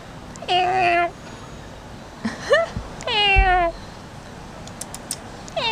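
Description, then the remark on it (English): A voice imitates a cat's meow, giving two drawn-out, wavering meows with a short chirp between them, clear against a quiet background. “Master, do the male sound.”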